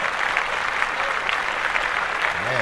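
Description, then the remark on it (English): Steady, dense clapping fills the whole stretch, a small group applauding together at a constant level for Ava DuVernay's When They See Us getting 16 Emmy nominations, with a faint voice briefly rising near the end. “Yeah, let's clap that up.”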